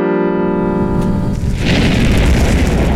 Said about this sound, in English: Stay tuned, and let's hear another chord, maestro.